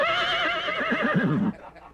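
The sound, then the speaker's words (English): A voice imitates a horse's whinny: a single loud, quavering neigh about a second and a half long, with a shaky high pitch that wobbles and drops before cutting off abruptly. “Now, have you ever consciously thought that you were on your way to becoming a horse?”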